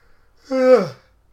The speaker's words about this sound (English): Sorry, I'm yawning badly.